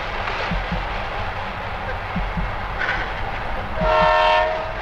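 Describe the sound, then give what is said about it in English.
An approaching train rumbles steadily with faint rhythmic clacks on the rails, then its horn blares with a loud, sustained chord-like blast in the last second. “Someone has probably spotted Turo on the tracks and is pulling the horn so he can save himself.”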